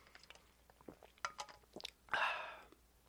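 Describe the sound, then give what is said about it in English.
A quiet sip of Vanilla Pepsi soda: a few small wet mouth clicks and lip sounds, then a short airy slurp near the end, with no talking. “But just a moment. I have to take a sip.”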